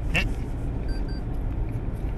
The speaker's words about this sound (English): So, my car's got this sensor thing that is supposed to be helpful. So, if you pass a line without having your indicator on, it will beep at you.